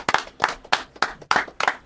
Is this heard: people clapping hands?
yes